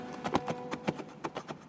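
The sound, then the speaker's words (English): Quick, rhythmic knocks follow one another steadily, horse hooves clip-clopping on a hard surface, moderately loud, with no voices, as a rider in armour rides the horse toward a palace. “Alastair put on the armour and rode his horse toward the palace.”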